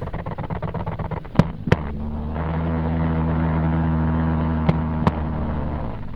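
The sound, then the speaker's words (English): A jumping spider vibrating on nylon pantyhose: a fast run of soft ticking pulses gives way to a steady, low buzzing hum, punctuated by a few sharp clicks, with no voices. “The surface that you heard it vibrating was actually on a nylon surface, actually a pantyhose.”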